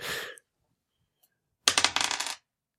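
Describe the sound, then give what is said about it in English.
Dice rattle briefly, then after a short pause tumble across a tabletop in a quick run of hard clicks and clatters, fairly loud, with no voices; a roll made during a game that comes up six. “So you're going to need to make a roll for that.”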